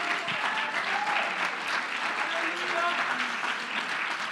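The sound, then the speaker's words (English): An audience claps their hands in a steady, dense wash of applause that holds at an even loudness throughout, with faint murmuring voices mixed underneath. “Come on, can somebody clap your hands if you believe it?”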